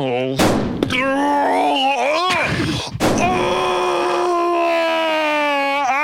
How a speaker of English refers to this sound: God, that silencer works.